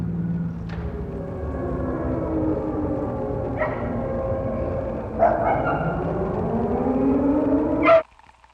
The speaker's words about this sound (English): At 11 o'clock, the air raid drill.